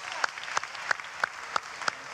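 Steady, rhythmic clapping: six sharp, evenly spaced claps about a third of a second apart over a soft, continuous wash of noise, with no talking.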